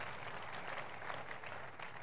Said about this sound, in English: Thereafter, I was saying, if you are clapping, make it bigger for Jesus.